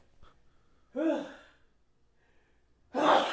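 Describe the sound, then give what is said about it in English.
A drawn-out, voiced intake of breath builds up, then a loud, sharp sneeze bursts out after a short pause; no talking. “Bless you.”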